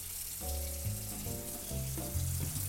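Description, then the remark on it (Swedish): One deciliter of water is poured into a hot pan for braising, setting off a loud, steady hissing sizzle that lasts throughout, with low, shifting tonal notes humming underneath and no voices. “Så då går jag in med 1 deciliter vatten.”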